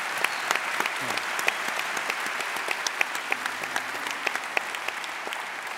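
A crowd applauds steadily for several seconds, a dense wash of many hands clapping at once with sharper individual claps popping out, holding a fairly even, moderate level throughout.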